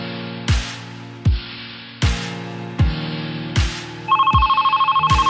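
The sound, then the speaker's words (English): A steady beat of punchy musical hits gives way to a loud, rapidly trilling telephone ring in the final second or so, layered over sustained background tones, on the radio show Purple Daily on Score North 1500. “And the phone is ringing again,”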